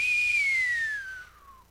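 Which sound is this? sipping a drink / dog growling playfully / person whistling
person whistling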